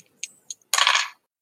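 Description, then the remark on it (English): A few light clicks of dice tumbling onto a hard table during a sanity roll in a tabletop role-playing game, then a brief clattering rattle as they roll and settle, with no voices. “I need you to roll me sanity. Okay. All right. I'm sure I only had a D6 out.”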